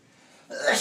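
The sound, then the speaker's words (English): A single sudden sneeze bursts out after a quiet moment, loud, with a sharp breathy hiss at the end. “Bless you, bless you.”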